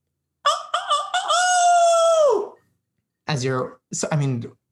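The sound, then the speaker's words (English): A loud rooster-like crow at night, probably a human voice imitating it: a few quick rising notes, then a long held cry that falls away, followed by two short vocal bursts. “First, it's a sound in the distance. You are asleep in your secret hideout, as you tend to be. But the crow gets louder.”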